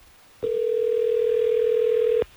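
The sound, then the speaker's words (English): A single steady telephone tone sounds for about two seconds, an even, unwavering hum that starts and stops abruptly, with no voices around it, as hosts of radio station Hot 101.5 place a call on air. “All right, let's get Dax on the phone so we can figure this out.”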